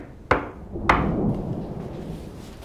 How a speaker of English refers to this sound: To play the game, you knock on your front door three times.